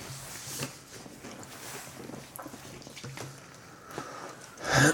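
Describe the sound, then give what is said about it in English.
Someone chews right into the microphone: irregular wet crunching and smacking noises over a steady rustle, ending with one louder burst of crackle. “Are you just chewing right into the mic?”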